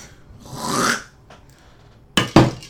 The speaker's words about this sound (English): I knocked that drink about as far as I could without knocking it over. It was, from a physics standpoint, remarkable that you didn't spill.